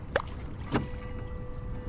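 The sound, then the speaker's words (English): Two hollow wooden knocks, like half-rotten oars bumping against a rowboat's hull as two people start to row, over a steady low rumble of water and faint ambient hum. “The oars, miraculously, are still lying in the bilge at the bottom of the boat, half rotten, but they'll do the trick.”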